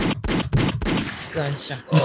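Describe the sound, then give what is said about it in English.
A gunshot sound effect, accidentally triggered by a button on an audio mixer, fires off as a burst of rapid, sharp bangs loudly in quick succession, followed by fainter tonal sounds and a brief bit of talking near the end. “I was trying to show him the mixer name, and I accidentally hit the gunshot button.”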